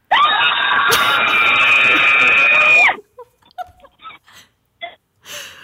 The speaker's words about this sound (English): Let's go to 06442 scream.